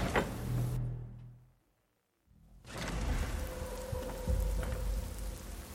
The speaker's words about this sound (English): Let's see. The lake seems to be glowing oddly and bubbling outside. Here. Very loudly, I'm sure you hear Shadowmere.